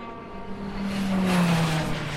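The number 7 Audi race car roars past at speed, its engine note rising then sliding down in pitch as it goes by, loud against a steady background of track noise.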